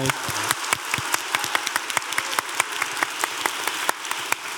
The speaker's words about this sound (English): She's right there. Give her a round of applause, honestly.